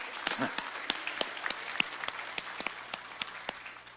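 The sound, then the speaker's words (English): A church audience claps steadily for a few seconds after a girl is declared saved, sharp individual hand claps standing out over a dense wash of applause, with a faint murmur of voices underneath. “If we did, let's clap again.”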